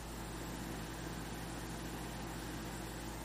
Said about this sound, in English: But the sound of the air conditioner. Can you hear it? I'll hold up the mic.